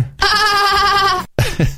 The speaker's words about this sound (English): If you had sheep, that's what they sound like.